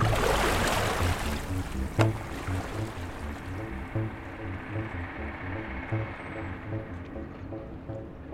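Several boats move across water, with a steady low engine-like thrum pulsing in a regular rhythm beneath rushing, splashing water that starts loud and gradually settles into a softer wash.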